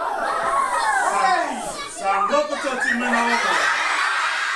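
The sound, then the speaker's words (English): A crowd of schoolchildren in Fiji screaming and shrieking together at a puppet show, right after a puppet encounters a barracuda; many high-pitched voices overlapping in a loud, continuous din with a brief dip partway through before the yelling surges again. “Are you sure it's just not them screaming because there's a puppet?”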